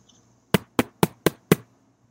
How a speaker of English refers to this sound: All right, I'm gonna knock on the door.